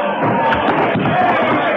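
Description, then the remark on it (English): A loud, steady roar of a crowd of pickets surging and shouting together, with a brief muffled bang partway through the commotion as a door gives way and they crash through. “I heard the door go. I heard the pickets crash through.”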